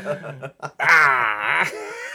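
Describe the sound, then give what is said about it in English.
A person voices a drawn-out, growling roar imitating a T-Rex dinosaur, rising loud after a few short voiced sounds and sustaining for over a second. “Yeah, he wanted to be a T-Rex because I even made my arm shorter.”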